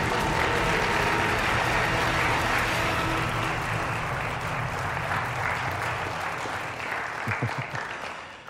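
A crowd claps in sustained, dense applause that stays loud and steady throughout, with a few whoops or cheers rising near the end.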